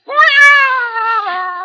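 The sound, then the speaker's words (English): A cat lets out one long, loud, drawn-out meowing yowl, its pitch wavering slightly as it trails on for over a second with no talking. “The cat was barely out of reach.”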